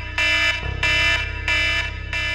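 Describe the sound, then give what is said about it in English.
A loud alarm set to a siren sound blares at night to wake sleeping girls, in steady repeating pulses, harsh electronic blasts about every two-thirds of a second, with no voices over it. “I put my alarm on like a big siren, because sometimes we would do like night games and wake up in the middle of the night.”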